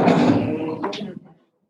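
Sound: sneeze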